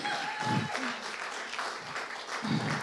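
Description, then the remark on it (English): A crowd claps steadily in a dense, continuous wash of applause after worship, giving a round of applause for God and then for the worship band, with a few faint voices and cheers rising under the clapping. “Can we give a round of applause first for God, then for the worship band?”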